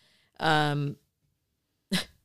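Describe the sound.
A loud, voiced sneeze bursts out with a drawn-out tonal cry, then after a short pause a brief, sharp second burst follows.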